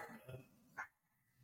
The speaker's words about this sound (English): That's our little dog. She's barking.